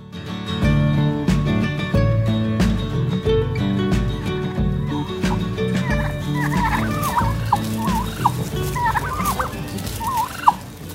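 Wild turkeys in Central Michigan gobble repeatedly in bursts of rapid, warbling calls through the second half, riding over a steady rhythmic music bed that plays from the start.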